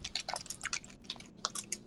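Keyboard typing: a quick, irregular run of light, crisp clicks and taps over about two seconds, fairly quiet, with no voices.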